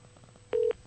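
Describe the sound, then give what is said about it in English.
A single short, steady electronic telephone tone sounds once, clear and fairly loud, during a Skype call attempt, over a faint low background hum with no one talking. “See if they pick up the phone.”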